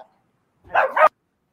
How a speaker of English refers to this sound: Dogs are losing their minds